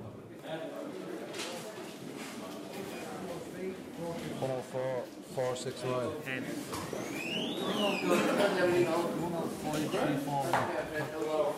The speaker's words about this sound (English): It's Friday evening in Clondalkin, the day before the race. It sounds like we're in a busy supermarket, but the barcodes being swiped belong to birds, not baskets of shopping.